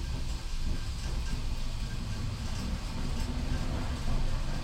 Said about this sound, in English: I mean, that literally sounds like a freight train is driving by.